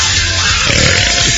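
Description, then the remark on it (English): A loud, long belch after an eighth beer rumbles out in one raspy, low-pitched burst lasting over a second, with a gurgling, croaking texture and no talking. “That was definitely an 8th beer belch.”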